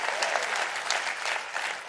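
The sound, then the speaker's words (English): An audience claps steadily, a dense, continuous patter of many hands forming a bright, even wash of applause with slight swells in intensity and no voices standing out. “Come on, clap your hands.”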